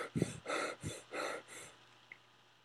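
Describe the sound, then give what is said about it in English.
A voice imitates heavy breathing: five or so loud, raspy breaths in a steady in-and-out rhythm, then fading to quiet. “He like wrote the heavy breathing down on the sheet.”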